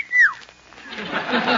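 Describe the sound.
A sharp human wolf whistle, one loud tone sweeping downward, whistled at a good-looking Coast Guardsman, quickly followed by a rising wash of audience laughter and murmuring.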